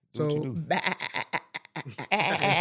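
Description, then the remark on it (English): A loud goat bleat with a shaky, wavering pitch that breaks into several quick bursts over about two seconds, probably a person's voice imitating the goat. “Insert goat noise.”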